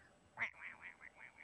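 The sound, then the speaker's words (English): A duck quacks, opening with one sharper, louder call and then a quick run of softer nasal quacks in an uneven rhythm, on its own. “And she'll throw her duck at it, and the duck will go.”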